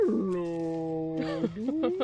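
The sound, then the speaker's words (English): A fairly loud voice imitates a beluga whale call, like the beluga whale in the film Finding Dory that helps find the fish: a long, steady droning tone that breaks into wavering, rising squeaky glides, lasting about two seconds. “No, a beluga whale is a whale that that helps find the fish and goes...”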